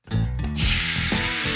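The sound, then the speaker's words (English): A loud, sudden sizzle as a rubbed steak hits a hot grill pan oiled with canola oil, a bright hissing crackle that bursts in and holds steady over a low rumbling background. “Make sure my steak doesn't stick to the grill. Get ready for the sizzle.”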